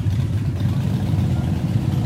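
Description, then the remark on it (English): Loud Harley-Davidson motorcycle engines rumble steadily, a deep, throbbing idle that fills the whole moment without a break and with no voices over it. “Man, these Harleys sure are loud.”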